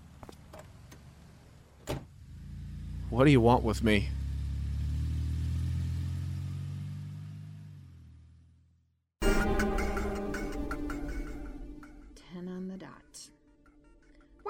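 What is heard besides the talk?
car door shutting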